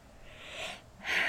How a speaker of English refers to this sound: That did something to you with your yawns.